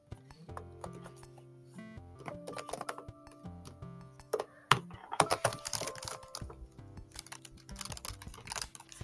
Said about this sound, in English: Hold on. Furiously typing.